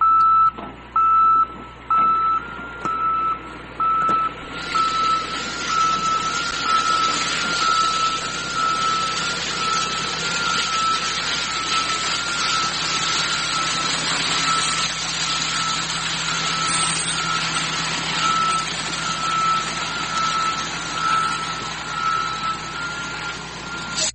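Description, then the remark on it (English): A dump truck engine rumbles loudly while a steady series of high reversing beeps repeats at an even pace, with heavy mechanical noise swelling as the truck pulls up. No one speaks. “I forgot how loud a dump truck sound when they pull up.”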